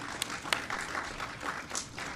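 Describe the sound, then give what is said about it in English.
An audience in Buffalo applauds AMC Theatres and Benchmark Group for their project in the city, with dense, continuous clapping, a few sharper claps popping out above the steady wash of hands. “So let's give AMC and Benchmark a great big round of applause.”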